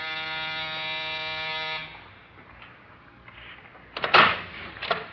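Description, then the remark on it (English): A building's door buzzer sounds one steady, harsh electric drone for nearly two seconds, loud, then cuts off into quiet background noise broken by a couple of brief clunks. “That's the buzzer over there.”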